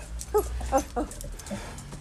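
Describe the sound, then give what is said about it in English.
A dog gives three short, high-pitched whimpers in quick succession, then a softer whine, excited in greeting as its owners come in, against a faint low background rumble. “Okay, guys, this is our dogs. We're just coming in.”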